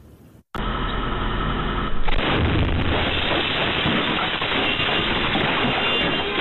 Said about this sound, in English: Seeing new video and really getting a new sense of how powerful the explosion which destroyed this house really was.